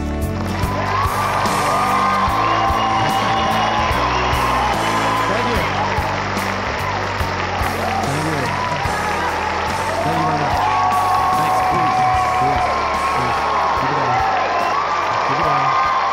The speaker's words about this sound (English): Thanks for the cheering.